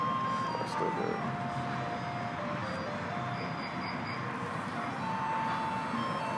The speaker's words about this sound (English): Here, that'll be perfect. We'll just end on the ice cream truck. So, yeah, that's perfect. That's perfect. Go out on that.